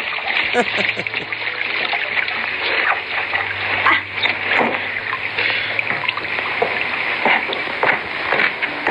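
Water splashes and sloshes steadily in a bathing barrel with a person bathing in it, fairly loud, with bursts of churning and splattering throughout.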